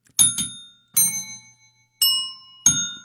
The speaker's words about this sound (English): Okay, the bell came over, but not the tuning.